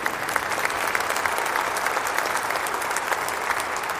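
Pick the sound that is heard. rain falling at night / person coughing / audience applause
audience applause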